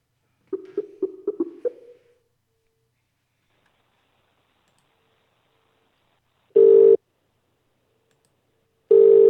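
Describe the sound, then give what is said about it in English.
A quick run of dialing beeps is followed by silence, then steady electronic ringback tones on an outgoing phone call, two clear bursts a couple of seconds apart, heard alone with no talking. “And just for that, I'm going to keep a fucking ringing.”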